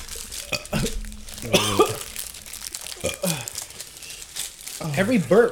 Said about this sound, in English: Every burp brings up older shit. This burp brought up straight from the barrel. Mm-hmm. That's what it is. It's the whiskey burping up. It went away and it came back.